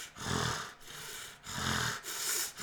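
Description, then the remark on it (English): A voice imitates a man's heavy, rapid labored breathing: four or so harsh, rasping in-and-out breaths in quick succession, fairly loud, with no talking. “And like, you hear him breathing, and it's just like very labored, but then it becomes very heavy, very quick, like.”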